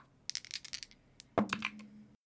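A quick flurry of small hard clicks and rattles as percentile dice are rolled across a table during a tabletop role-playing game, then a sharper clack as one lands and settles with a brief ringing tone.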